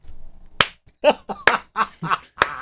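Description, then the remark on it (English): A slow clap: a few sharp, loud hand claps spaced roughly a second apart, with short bursts of voices sounding between them. “I mean, we can't do any better than the finish for the slow clap.”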